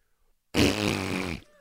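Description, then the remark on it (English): A voice makes a loud, sputtering wet fart imitation lasting almost a second, buzzy and bubbly, after a moment of silence. “Wet fart noise.”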